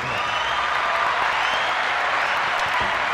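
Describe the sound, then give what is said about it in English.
A steady round of applause from a group for the first drink being presented, many hands clapping in a dense, continuous wash of noise that holds an even loudness for about three seconds, with no voices standing out. “Let's give a round of applause for the first drink.”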